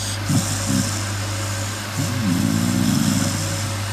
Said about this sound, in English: Hayley's got a dog called Jess, and she said, here's my dog snoring.